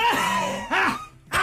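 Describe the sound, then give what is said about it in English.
A voice mimics a hacking cough with three strained, groaning bursts. The first is drawn out and sliding in pitch, followed by two shorter, rasping heaves, with no other talk. “It sounds like a field hospital from the American Civil War.”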